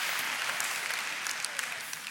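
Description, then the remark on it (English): A crowd claps hands in steady, dense applause, a continuous crackling wash of many overlapping claps with bright sharp transients and no voices rising above it. “Give God a hand clap.”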